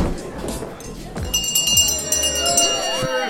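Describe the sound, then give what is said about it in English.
A last-call bell starts ringing partway through, its bright, high metallic tones sustaining to the end over a busy background of crowd chatter and clinking glasses. “That's the last call bell for this week”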